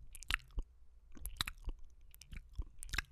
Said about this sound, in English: The sound of my tongue separating from the roof of my mouth.